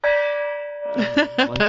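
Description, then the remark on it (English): A single loud gong strike, used as a sound effect, rings out with a bright, sustained metallic tone; after nearly a second, someone starts talking over its fading resonance. “the compound fracture that is the gong of infinite knowledge, with the twisted epididymis of facts and the cracked weenus of statistics.”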